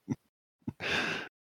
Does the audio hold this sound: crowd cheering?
no